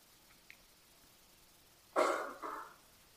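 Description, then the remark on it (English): Two quick coughs from a person in a quiet meditation hall, the first sharper and louder, the second softer, followed by silence. “A person just coughed.”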